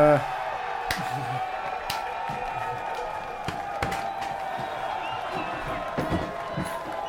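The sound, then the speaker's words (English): A crowd cheers and whoops steadily for several seconds as a special guest is welcomed, a loud, dense wash of voices punctuated by sharp claps and shouts, with no single speaker standing out. “You got the cheering going, dude.”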